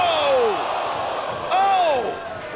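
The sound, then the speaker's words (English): A heavy crash as wrestler Jeff Hardy leaps off a steel chair and smashes through a wooden table cuts through a roaring crowd, with excited voices swelling around the single impact. “Jeff Hardy leaped off the steel chair and then crashed through the table.”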